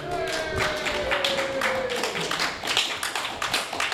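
A crowd claps and cheers continuously, with dense overlapping hand claps, shouts, and a long whistle-like tone that slowly falls in pitch, staying loud throughout.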